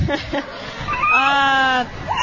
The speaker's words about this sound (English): Scream. You think that's from a horror movie?